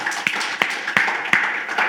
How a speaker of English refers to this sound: If Reverend L did an awesome job, just clap your hands. He did an awesome job.